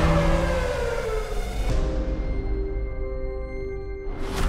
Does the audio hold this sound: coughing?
no